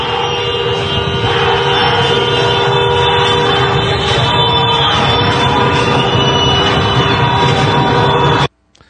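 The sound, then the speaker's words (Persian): Car horns honk loudly and without pause at a street gathering in front of Shariati metro station, where people are chanting slogans. Several horns overlap into a steady blaring chorus over a dense wash of street noise, before cutting off abruptly near the end. “اینایی که بوق میزنن نمیذارن که صدای مردم هم شنیده بشه، واسه عروسی ننت هی بوق میزنی دیوز.”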